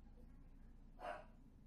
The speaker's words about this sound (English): Hold on, my dog's barking. Hold on.